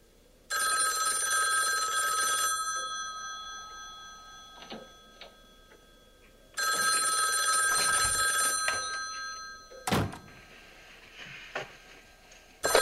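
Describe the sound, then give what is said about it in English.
A telephone rings twice in long, trilling bursts separated by a few seconds of quiet, fairly loud, with a few faint clicks and knocks in between and no one talking. “Maybe I'll plunk in a chunk of the phone call.”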